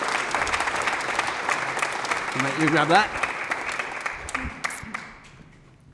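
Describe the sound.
A crowd claps steadily, a dense wash of applause that fades toward the end, with a man's voice speaking briefly over it near the middle.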